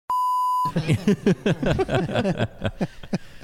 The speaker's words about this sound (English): Okay, you're going to beep that out.